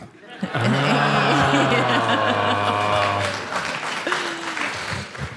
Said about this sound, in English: That did not deserve even that sarcastic round of applause.